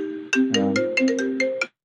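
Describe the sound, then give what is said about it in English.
A melodic phone ringtone plays a quick run of bright electronic tones with sharp attacks, loud, lasting under two seconds before cutting off abruptly; a phone going off on set during a recording. “Phone's off on set. Very unprofessional.”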